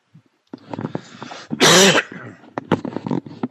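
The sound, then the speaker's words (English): A loud, raspy cough bursts out in the middle, framed by a scatter of smaller throaty hacks and breaths, with no talking. “Strand cough.”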